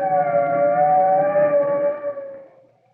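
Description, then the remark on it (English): A fire truck siren wails as the truck arrives at an apartment house, in one long, loud, steady tone that slowly sinks in pitch and fades out at the end, with no voices. “Here comes the fire truck, Tim.”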